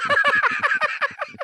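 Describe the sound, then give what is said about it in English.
A wild turkey named Kevin, leader of a flock of five wild turkeys in Woburn, Massachusetts, gobbles loudly, a rapid rattling burst of about a dozen throaty, wavering notes that slow and fade slightly toward the end. “And their leader is one especially tough turkey, Kevin.”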